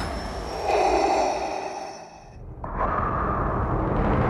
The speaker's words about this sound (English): The second big moment to me is the unmistakable Vader breathing sound effect. It's one of those things that no matter how many times you've seen Star Wars, that sound still sends shivers down your spine.